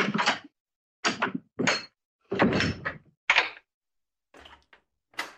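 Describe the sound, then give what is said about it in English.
A door being opened, heard as a series of fairly loud clunks and rattles in uneven bursts with brief silences between, ending in a few fainter knocks. No voices. “get the door.”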